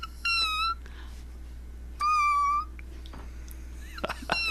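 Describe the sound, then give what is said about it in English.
A person imitates a kitten's meow twice, each a high, thin, sustained mew roughly a second apart, followed by a few brief squeaky chirps, clear over a low steady hum. “I recently put on that I can talk to kittens, because I can herd kittens, but I don't know if I can do it right now.”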